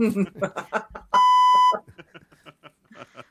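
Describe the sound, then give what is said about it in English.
A loud, steady censor bleep tone lasting just over half a second cuts through ongoing conversation, with people talking before and after it. “should we utilize the beep button if I say stuff? Should we just have the beep button ready to go?”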